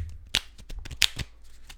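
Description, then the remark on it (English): Playing cards being shuffled and flourished, a quick run of crisp papery riffles and snaps with a few sharper slaps standing out, no voices. “Shuffle this? No. Yeah, that wasn't even shuffling. Flourish this a little bit.”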